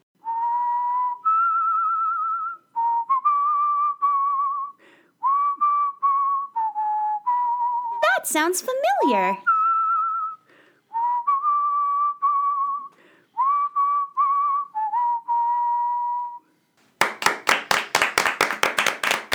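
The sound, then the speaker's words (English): Someone who has lost all their teeth whistles a melodic tune in clear, steady phrases with a brief sliding swoop partway through, followed by a short burst of rhythmic hand clapping at the end. “You're so good at whistling.”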